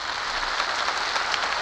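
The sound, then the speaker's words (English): An audience at the Lux Radio Theater broadcast applauds steadily, many hands clapping at once into a dense, even hiss of claps with no voices, holding the same loudness throughout the short stretch. “That's the greatest award there is. The applause of a nation.”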